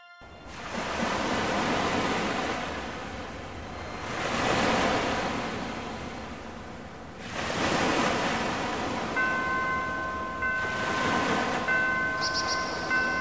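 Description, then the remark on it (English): Heavy ocean waves surge and wash in a steady rhythm during a rough boat trip of a few weeks to Den Bazaar, about four loud swells rising and falling over a constant roar of rushing water, with no voices. “The boat trip was rough and took a few weeks, but I finally arrived in Den Bazaar.”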